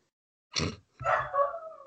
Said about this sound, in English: Oh, some spirit back there doesn't like that idea. Yeah, I think it's a dog spirit. I think that sounded like a dog, yeah.